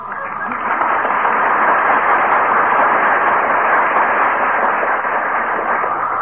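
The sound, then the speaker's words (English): A strong wind roars, growing stronger into a gale, in a dense, steady rush of noise, swelling quickly at the start and then holding loud and unbroken, with no voices over it. “Heavenly days, McGee. The wind is getting stronger.”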